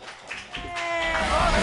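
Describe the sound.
Brief quiet is followed by the swelling, dense patter of an audience applauding the evening's host, growing louder and steady over about a second, with voices cheering through it.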